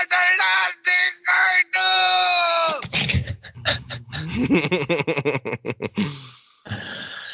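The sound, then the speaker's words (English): A voice imitates a hungry dog: first a long, high-pitched whine, then a quick run of rhythmic, breathy panting bursts, loud, ending with a short hiss. “Mr. Kim is freed by a hungry dog”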